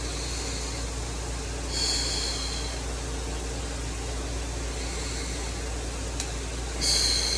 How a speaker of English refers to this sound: I'm just holding it there and breathing in and out. You don't have to breathe in now, but it does seem to make it a little easier. So let's see if I can hold it there at least a minute. And the whole time I'm just breathing in and out.